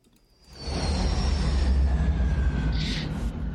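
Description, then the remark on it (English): A jet flyover sound effect, played as a cue before a segment on the flyover, roars in after a brief quiet start, swelling into a loud, broad rumbling whoosh with a faint high whine that sustains for several seconds. No one speaks. “Hit that jet sound.”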